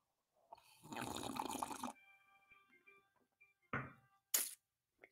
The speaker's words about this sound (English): Excuse me. Let me get a sip of this coffee.